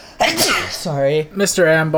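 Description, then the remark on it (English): A single sharp sneeze, caused by a small allergy, bursts out at the start, followed right away by a voice speaking a few words. “Bless you.”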